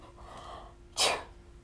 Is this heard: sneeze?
yes